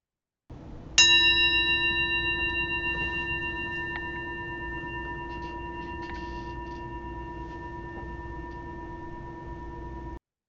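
meditation bell ringing

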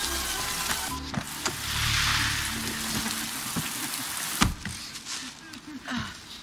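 light rain sprinkling

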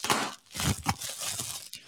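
bubble wrap being popped

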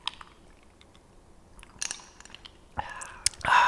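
sipping moonshine

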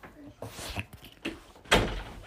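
door being pulled shut

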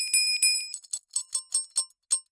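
hand bell being rung

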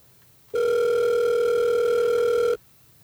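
telephone ringing

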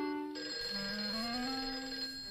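telephone ringing

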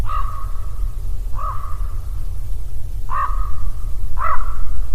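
raven cawing sound effect

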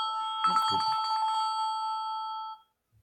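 phone ringing

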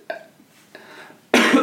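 cough

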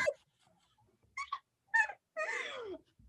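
dog vocalizing

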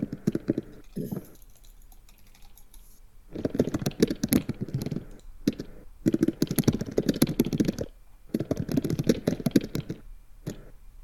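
computer keyboard typing

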